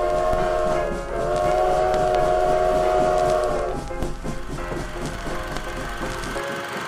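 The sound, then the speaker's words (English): A loud train approaches and rumbles, its sustained horn-like tones blaring over a steady mechanical roar before fading into continued clattering rail noise. “There's a train coming, sir!”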